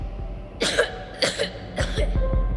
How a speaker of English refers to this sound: He started coughing.